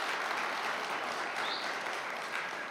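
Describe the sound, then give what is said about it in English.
A church audience claps steadily for the church's staff team, a dense, even wash of many hands with no breaks and no voices, holding at a constant level for a few seconds. “Yeah, you can clap. That's fine.”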